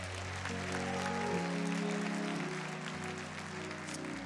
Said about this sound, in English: Give yourselves a rousing applause.